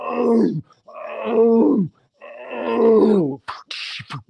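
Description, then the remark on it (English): A person imitates lions roaring with three long, loud, drawn-out vocal roars in a row, followed by a few short breathy noises. “The lions are roaring in section 380.”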